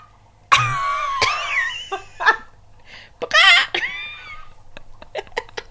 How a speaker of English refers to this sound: One of the chickens is, like, screeching for some reason. I think she laid an egg. It sounds like an egg laying sound, but it's 10 p.m.